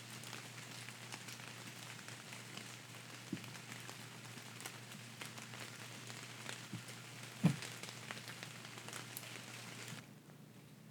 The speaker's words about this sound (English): And before you open your eyes, take one more moment to just take in the sound of the rain, and relax.